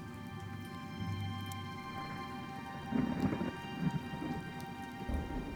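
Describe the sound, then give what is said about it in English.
Steady rain patters down, joined by low rolls of thunder rumbling in the distance, swelling briefly a couple of times before settling back into the continuous downpour. “Long grayish hair is dripping rain right now.”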